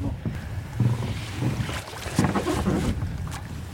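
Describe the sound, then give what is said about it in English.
A small boat moves steadily across open loch water in Assynt, Scotland, its low engine rumble blending with lapping water and gusts of wind buffeting the microphone, with no voices. “Take a boat adventure onto a beautiful loch in wild and rugged Assynt”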